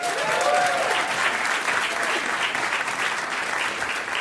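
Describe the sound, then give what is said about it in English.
A crowd applauds steadily as the next contestant is introduced, dense overlapping claps forming a loud, even wash of sound with a brief cheer near the start, sustained throughout. “You can clap.”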